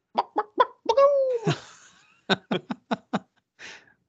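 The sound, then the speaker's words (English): A person imitates chickens with a quick series of sharp, clucking syllables, a drawn-out squawk in the middle, then more rapid clucks ending in a short breathy trailing note, fairly loud. “I just picture a bunch of chickens just bacat, bacat, bacat, feathers going up in the air.”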